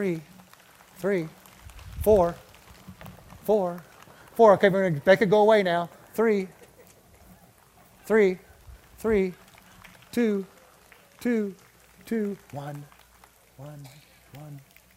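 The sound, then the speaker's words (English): A crowd split into groups mimics rainfall, one group snapping fingers and another golf clapping, making a soft, steady patter that continues under a man's voice as he talks and counts. “All right, the rain came and gone.”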